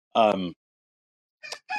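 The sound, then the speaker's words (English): A rooster crows, a short, loud, strained burst, followed after a pause by two briefer, rougher calls. “get to hear my rooster.”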